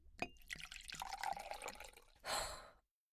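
Water is poured into a glass with a bright, splashy trickle and a few clinking drips, ending in a short hissing gush. Clear, with no voices.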